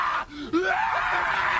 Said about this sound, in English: Now, that's jokingly in a movie, but that scream is to intimidate. Okay. That's to intimidate somebody.